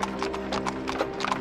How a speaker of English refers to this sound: The horses began to slow down to a normal trot.